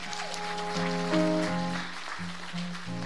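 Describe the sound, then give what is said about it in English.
A church audience applauds a member who is to receive a civic award from the African American Society, in a steady, crackling wash of clapping, while sustained keyboard or organ chords ring underneath and shift pitch every so often. “Can we clap for her?”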